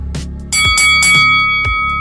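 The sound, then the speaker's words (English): A bright notification bell chime rings out, a ding that lingers with a sustained metallic tone, layered with quick sparkling hits over a steady low background, loud. “Don't forget to hit that bell.”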